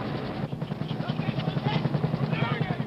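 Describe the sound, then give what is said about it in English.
A Dust Off medevac helicopter flying back to Hawk Hill with wounded aboard, its rotor blades beating a rapid, steady low thump beneath a loud, constant engine roar and hiss. “Dust Off has returned.”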